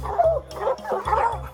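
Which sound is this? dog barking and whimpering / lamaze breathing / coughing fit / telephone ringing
dog barking and whimpering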